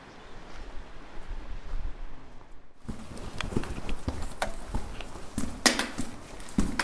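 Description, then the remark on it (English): Hard footsteps echo through a tunnel at the old fishing hamlet of Porthgwara that leads down to the beach, in a steady walking rhythm, each step sharp and ringing, starting a few seconds in after a quieter stretch of low ambient rumble. “Echoey tunnel at Porthgwara leads down to the beach.”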